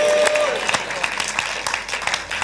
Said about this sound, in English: Clap your hands and say, glory to God.